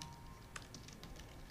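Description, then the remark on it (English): Soft, irregular clicks of someone typing the title of a class on a keyboard, a quick run of light keystrokes over a faint low background hum, with no talking. “I'm just typing in the title on IG of the class.”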